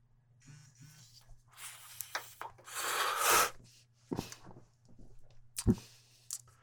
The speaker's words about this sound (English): Let's see if the combination of the entourage effect with BC Spiced Grape gives me the hit that I'm looking for. The Crafty Plus is warming up. Let's have a hit of the joint, see what it does.